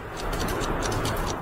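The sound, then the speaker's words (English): A countdown clock counting down 30 seconds during a quiz game ticks in a quick, steady rhythm, each tick a crisp high click over a dense, even background that holds a constant moderate loudness, with no voices. “30 seconds on the clock.”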